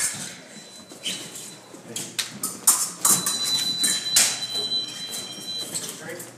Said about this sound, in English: The ringing of the épées may as well be the ringing of a cash register.